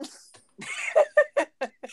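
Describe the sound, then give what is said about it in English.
A quick series of short, harsh coughs, about five bursts in close succession, fairly loud, following a brief rougher exhalation, with no talking over them. “Yo, he coughed at the same bro.”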